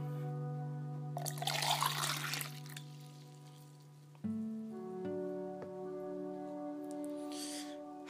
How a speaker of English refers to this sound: Please, let me drink some water.